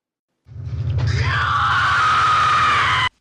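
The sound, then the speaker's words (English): A loud scream from a film rises sharply and holds for about two and a half seconds over a low rumbling undertone, then cuts off abruptly. “Quick content warning: this scream is pretty loud and a little uncomfortable, you might want to just skip ahead a little bit.”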